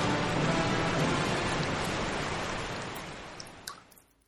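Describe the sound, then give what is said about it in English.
A loud, dense roar of rushing water surges steadily as the sea is parted, like great waves pulling apart, then gradually fades away with a few faint splashes at the end. “Well, it's simple. I parted the sea like Moses.”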